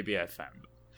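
A short, close burp: a low, voiced rumble followed by a brief breathy burst, then quiet. No one speaks.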